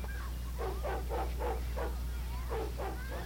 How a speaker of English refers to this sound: Barking faintly.